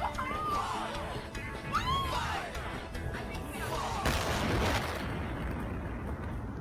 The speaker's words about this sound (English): It ends in a... It ends in an explosion. Yeah, the refinery in China. Oh, yeah, that was a huge explosion.